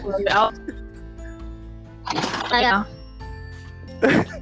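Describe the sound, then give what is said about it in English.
A sustained, bright ringing tone, like a bell sound effect, hangs through the whole stretch while short bursts of people talking break in over it. “So where's my bell? Don't worry, we'll put bell in the editing.”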